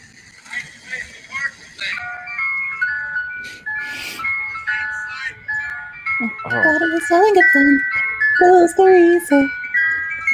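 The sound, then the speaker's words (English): A tinny ice cream truck jingle plays a repeating, slightly wobbly melody of sustained electronic notes at steady volume, with voices talking over it during the second half. “This is what I hear all day long.”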